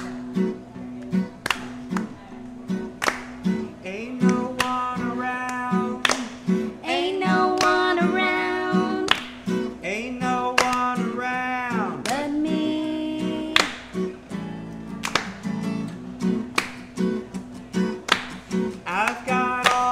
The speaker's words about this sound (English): Got the clap going, y'all.